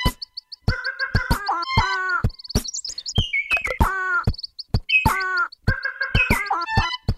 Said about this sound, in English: He finishes up with the Madagascar long-eared owl, the red-fronted quaw, and the Sayumanga sunbird. Beast mode.